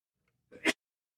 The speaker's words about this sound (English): I was trying to time that sneeze to take it off the air. We're not good timing. I don't know if it worked out. It was holding back there.